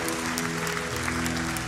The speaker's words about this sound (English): And as they are coming up, we just want to honor the mamas in this place. Can we cheer for our moms and our grandmas?